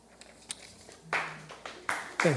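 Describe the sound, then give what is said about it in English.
A live audience breaks into a scattered burst of clapping that swells in uneven waves, mixed with some crowd noise and a voice near the end. “Ah, I love audiences that have the clap.”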